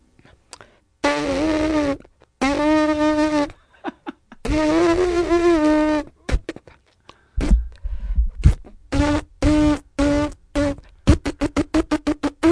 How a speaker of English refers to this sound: I buzz with my lips. I can play scales with